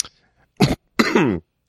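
A person coughs twice: a short, sharp first cough, then a longer, rougher second one with a throaty, voiced rasp. No speech around it.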